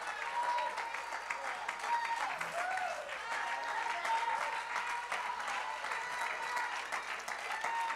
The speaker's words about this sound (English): Just keep on clapping.